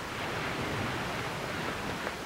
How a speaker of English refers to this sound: With no sign of her next scroll, Marky and Five watched the waves roll into the shore.